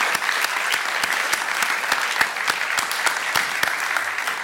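A crowd gives a speaker another round of applause, dense clapping at a fairly loud, even level, with a few sharper individual claps standing out throughout.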